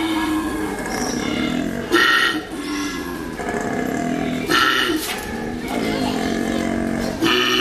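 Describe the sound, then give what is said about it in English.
A male koala bellows during mating season in a loud, deep, rasping drone, snore-like grunting broken by three harsher belching bursts at a steady rhythm, with no one talking over it. “That was a male koala during mating season.”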